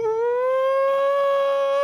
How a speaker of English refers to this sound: And the lights went out and had like that, like kind of like a siren.